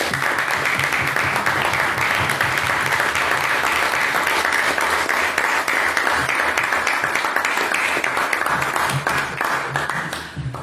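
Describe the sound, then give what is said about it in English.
Sustained applause from a large audience after the final speech of a debate, dense and steady clapping filling the whole stretch without pause, then thinning slightly at the very end. “And if we can get one more round of applause for all of our speeches this evening.”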